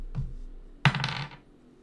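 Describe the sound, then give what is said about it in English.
Dice are rolled for a perception check and roll across a hard surface: a soft tap, then a sharp clatter that rattles briefly and settles within about half a second. No voices. “Roll me perception.”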